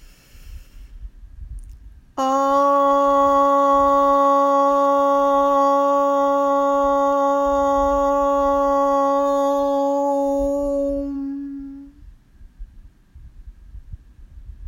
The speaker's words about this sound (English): Again, breathe in and say om. Breathe in. And one last time, breathe in and om on the exhale. Breathe in.